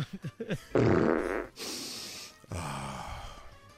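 A comedic fart sound effect: a few quick sputtering pops, then long, loud, raspy blasts with a hissy stretch between them, with no talking.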